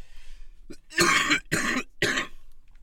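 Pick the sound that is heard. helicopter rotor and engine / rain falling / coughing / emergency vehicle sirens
coughing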